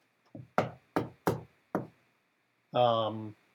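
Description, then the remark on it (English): Five loud, heavy bangs on a locked door in a quick, slightly uneven series, followed by a short voiced call after a brief pause. “Bang on the door.”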